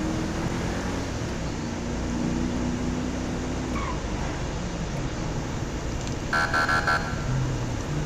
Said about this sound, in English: We're driving a black Charger. That's how I go incognito. I drive a black Charger.